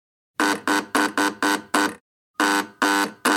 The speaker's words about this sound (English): And a buzzer.